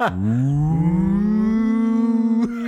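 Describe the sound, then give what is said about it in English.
A voice imitates the THX logo sound: a low hum glides upward and swells into a loud, sustained, buzzy drone rich in overtones, holding steady before cutting off after about two and a half seconds. “Like I take a sip and like the THX logo plays in my head.”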